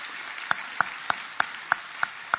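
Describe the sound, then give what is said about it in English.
A church audience at a Sunday morning service claps their hands together for the Lord in a steady, even rhythm, sharp distinct claps landing about three times a second over a softer wash of many hands. “can you give the Lord a hand clap?”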